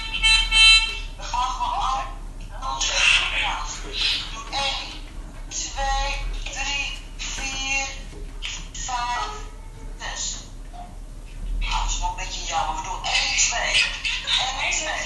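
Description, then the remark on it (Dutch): Choir members at a rehearsal sing together from their homes, sheet music on their laps and phones in hand, over a thin, tinny phone-quality line. Their sustained notes are slightly out of step and broken by short gaps, with the sound dropping and returning in bursts. “Het is dus een koorrepetitie. De leden zitten thuis met hun bladmuziek op schoot en de telefoon in de hand in te zingen.”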